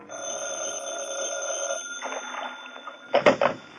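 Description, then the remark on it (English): A telephone bell rings in an office in a long trilling burst, then rings again in shorter jangling bursts, clear, with no one speaking. “The first break in the case developed over the phone.”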